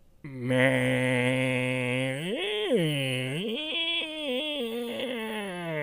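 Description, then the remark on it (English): A voice imitates a slow-spinning table saw with a long, low, nasal drone that swoops up and down in pitch a couple of times, then wavers unsteadily, sounding like a groaning bleat. “And the table saw does not, the blade is spinning, but very slowly. And it's just kind of making this sound.”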